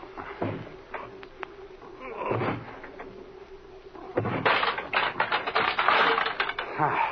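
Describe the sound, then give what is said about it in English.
A few heavy thumps against a wooden door with only a weak lock, then a burst of loud creaking, cracking and rattling as the door is shoved with a shoulder and forced open; no voices. “Come on here, put your shoulder to this door. It doesn't have much of a lock.”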